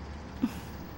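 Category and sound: vehicle, truck driving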